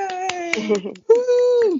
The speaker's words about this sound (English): Woo! I'm clapping too over here, like, woo!